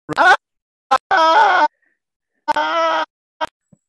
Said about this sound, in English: I love how he just goes to, you know what? I'm not winning with what I want to do, so I'm just going to scream into the microphone while I fat finger the mute button.